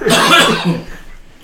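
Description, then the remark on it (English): A single loud, harsh cough, a rough burst lasting under a second before trailing off into quiet. “Cough. Get out my fucking face.”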